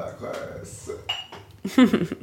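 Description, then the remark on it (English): Rosé wine is poured into a glass: a few bright clinks of glassware, then a louder, splashing gush of liquid that runs for about half a second, with faint muffled voices underneath. “The mic really picks up that.”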